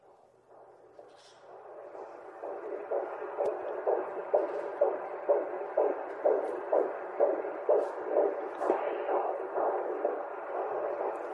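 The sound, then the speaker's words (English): A muffled, rhythmic whooshing pulse like a heartbeat heard from inside the womb, steady beats repeating roughly every half second over a low continuous hum, soft. “The very last one on here is womb.”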